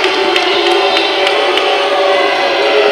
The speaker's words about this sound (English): You can hear the Boo Birds out. Yeah, this crowd's getting into it now.